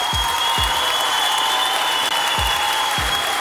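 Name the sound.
applause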